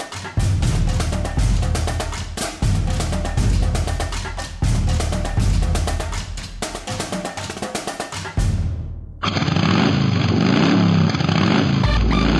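A motorcycle engine roars and revs loudly, its throaty growl surging in bursts before cutting abruptly into a steady, dense, high-pitched drone for the final few seconds.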